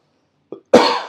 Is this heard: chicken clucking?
no